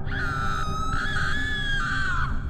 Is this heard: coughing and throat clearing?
no